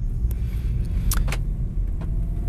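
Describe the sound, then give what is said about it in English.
A steady low car rumble fills the background while a few short clatters and rustles cut in as someone climbs into a car seat, jangling keys and shutting things. “I'm jumping in the car.”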